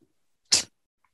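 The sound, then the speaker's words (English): A single sharp sneeze from a person with a clogged nose, caused by dust in a kitchen, bursts out as a quick explosive hiss lasting a fraction of a second, with near silence before and after. “My nose is all clogged up. I'm sneezing.”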